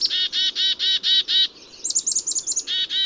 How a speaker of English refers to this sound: That's a bird. It's a small songbird. That narrows it down. Sparrow. Oh, my God. Okay, that was a black-capped chickadee.